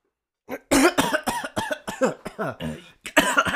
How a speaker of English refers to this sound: seemed to inhale some of its fumes when it blew up. And it's got a slight cough.